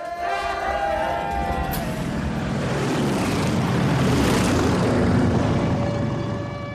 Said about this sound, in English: As they come out of their house to greet their guests and family, three sons, one daughter, and Carl's son from a previous marriage, Michael, they're interrupted by low-flying planes dropping leaflets. War has broken out.